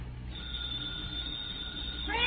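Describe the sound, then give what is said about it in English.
A telephone rings steadily for a couple of seconds, a muffled, continuous ring heard over a low background hum, with no voices. “Telephone's ringing!”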